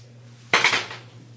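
An eight-sided die (D8) is rolled for healing in a tabletop role-playing game, clattering across a hard tabletop in a sharp burst of rapid clicking rattles that tumble and settle within half a second. No one speaks; a low steady hum sits underneath.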